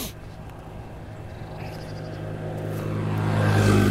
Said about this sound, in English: It's really quiet. You hear that? Almost no cars. There's one motorbike going to pass me by in a few seconds. But this is definitely... much less traffic than normal on this road.